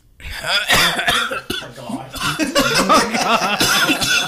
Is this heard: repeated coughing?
yes